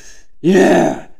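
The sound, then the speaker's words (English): A man's voice imitates the heavy, strained grunt of a man in a sauna, one loud burst of about half a second with breathy exhalation, preceded by a faint breath. “The grunt / breathing dude that's sitting there.”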